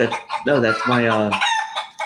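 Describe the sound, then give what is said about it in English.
A rooster lets out one loud, drawn-out crow near the start, followed by a few short, choppy clucks from chickens. The animal sounds are clear, with no talking. “What about chickens?”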